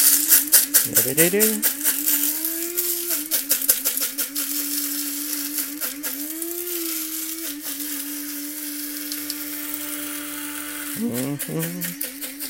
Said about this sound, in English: Okay, this is the noisy bit. I'm going to grind some coffee, if you'll bear with me for a second.